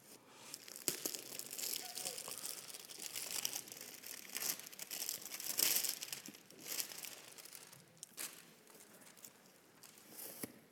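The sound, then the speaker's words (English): Continuous crinkling and rustling of a paper Taco Bell takeout bag holding a Crunchwrap Supreme being handled and opened, with sharp crackles and brief louder snaps scattered through, fairly loud and irregular throughout. “I want you to tell the people of God here what's in that bag this morning.”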